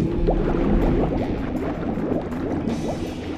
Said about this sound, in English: Helmet on. Filling exit chamber with water.